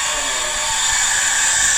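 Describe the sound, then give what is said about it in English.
A hair dryer runs continuously, a loud steady airy whoosh with a constant motor hum, filling the whole short stretch without pause. “That's the hair blow dryer.”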